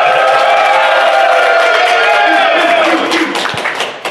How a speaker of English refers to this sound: The biggest crowd we've had in Florida. Oh, yeah. And certainly the loudest, too. Definitely the loudest.